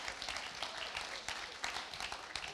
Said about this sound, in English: So 5 boys and a girl. He deserves a round of applause just for that.